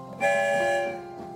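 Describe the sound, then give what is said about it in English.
A single whistle of the Story Train, leaving the station, blows: a bright, harmonic tone that starts sharply, holds steady for about half a second, then fades out, loud with no talking. “One whistle, we're on our way.”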